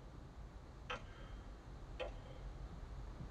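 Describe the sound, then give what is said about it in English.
The Gotham Clock Tower in Gotham City ticks twice at night, crisp and evenly spaced about a second apart, over a low, steady rumble. The ticks are faint, with no voices. “Disguised by the cover of night, Batman stealthily enters the Gotham Clock Tower.”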